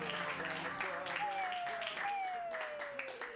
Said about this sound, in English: Clap wildly for Ginny Hogan. Yay!